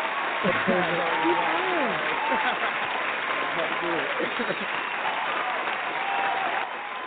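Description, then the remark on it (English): A crowd claps steadily for several seconds at the end of a show, a dense, sustained wash of applause for the people just thanked, with some voices rising and cheering underneath before it eases off slightly at the end. “Let's give them all an applause.”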